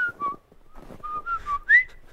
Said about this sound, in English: I'm whistling my oh, it's not picking it up, is it? I'm whistling my my walking song. So one second.